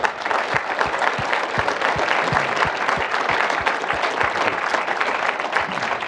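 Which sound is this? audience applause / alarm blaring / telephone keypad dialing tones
audience applause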